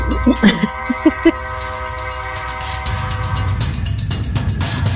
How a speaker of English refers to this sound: And then the train whistle blows again.